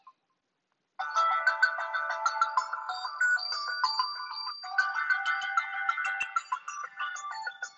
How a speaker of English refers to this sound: This is the last ringtone.